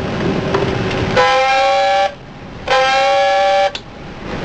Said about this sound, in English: Chief of the watch on the 1MC. Pass the word. Dive, dive. Sound two blasts of the dive alarm. Pass the word. Dive, dive.